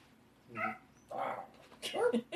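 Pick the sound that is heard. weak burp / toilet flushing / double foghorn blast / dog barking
dog barking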